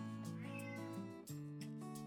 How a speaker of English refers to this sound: a cat only meows when she wants some food